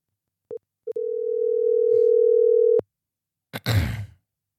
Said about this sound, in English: It'll probably be about a 10-minute phone conversation, and then we'll end this episode. Here we go. Let's give him a ring.